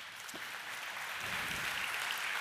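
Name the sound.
audience applause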